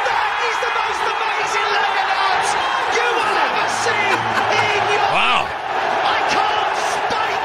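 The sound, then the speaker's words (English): A huge crowd at a darts world final overseas cheers and chants without pause, a dense, loud roar of many voices with shrill whoops and whistles rising above it, and a brief dip just past the midpoint. “That's the crowd. Yeah. So many people are there.”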